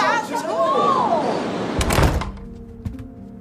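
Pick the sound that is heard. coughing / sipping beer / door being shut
door being shut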